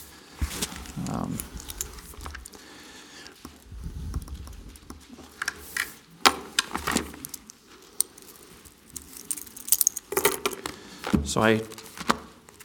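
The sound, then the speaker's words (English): Keys jangle and clink in a pocket in short, irregular bursts of metallic rattling, mixed with soft rustling and shuffling movement. “Forgot to take my keys out of my pocket”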